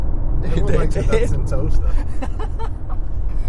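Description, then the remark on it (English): A steady, low rumble of road and engine noise fills the inside of a moving car, continuous throughout, while people talk over it. “We've never actually done this in a car before, driving.”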